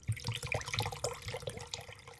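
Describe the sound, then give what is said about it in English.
Liquid pours out steadily in a close, splashy stream, gurgling and spattering for a couple of seconds with no voices. “To Mr. Ambulance Driver, I pour one out.”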